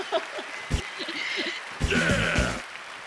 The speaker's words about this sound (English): Love the background noise. And the crowd goes wild.